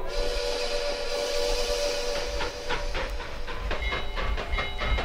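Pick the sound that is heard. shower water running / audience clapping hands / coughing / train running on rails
train running on rails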